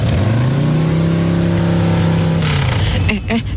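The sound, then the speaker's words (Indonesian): A motorcycle with a punctured tire drones loudly and steadily while being ridden, holding an even pitch for about three seconds before easing off, followed by a few brief clattering noises. “Lo kok motor kamu mendadak geol-geol gini sih sayang?”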